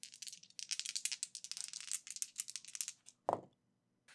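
Two dice rattle rapidly in a steady, bright clatter for about three seconds, then land with a single low thud showing a 2 and a 3, followed by near silence.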